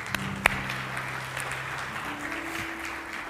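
Steady applause from an audience, a dense wash of overlapping claps at moderate loudness throughout, with one sharper clap standing out early and a low hum underneath.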